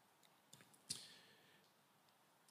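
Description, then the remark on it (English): A few small plastic clicks from a presentation remote, clicked repeatedly to advance slides toward a blank screen, spaced irregularly in near silence: a faint one early, a sharper click with a brief ringing tail, then a louder click at the very end. “I'm just going to keep on clicking this until we get a blank screen again.”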